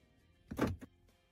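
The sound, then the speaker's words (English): A car's door locks unlocking as someone pushes the lock button: a quick mechanical clunk followed by a smaller click, then quiet. No one speaks. “Do your doors unlock on their own? No, I literally just pushed it.”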